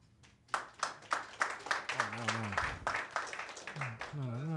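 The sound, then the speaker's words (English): An audience breaks into applause, a dense patter of many hands clapping that starts abruptly and keeps going, with a few voices calling out over it. “Oh, God, applause.”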